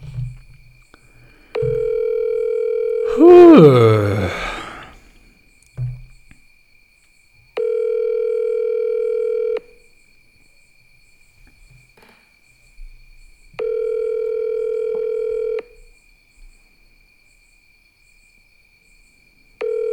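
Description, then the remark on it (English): A Telegram call's ringback tone repeats steadily while calling a friend, long beeps of about two seconds separated by longer pauses, with a brief warbling electronic chirp over the first one. “calling our friend Leo. Leo might answer, or he might not. Only one way to know. Why is it not ringing?”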